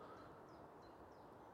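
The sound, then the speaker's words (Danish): A great tit sings faintly, a few high, repeated whistled notes rising above a steady wash of outdoor background noise. “Andre fugle, du kan høre. Musvitten.”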